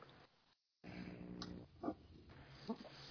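A dog makes low, grunting vocal noises, a few short throaty bursts over a murky background, not loud, with no one talking.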